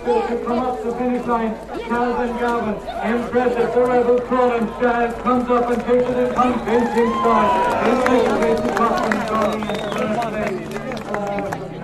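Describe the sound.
A lively outdoor crowd at the Omey races, many overlapping voices talking and calling out at once as people mill around horses beneath a dense, brooding sky, steady throughout, with faint scuffling movement underneath.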